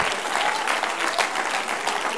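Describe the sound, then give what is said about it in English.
An audience at a church service claps their hands to Jesus in a dense, steady wash of applause, many hands overlapping without a clear beat, holding a fairly loud, even level throughout. “Would you clap your hands to Jesus?”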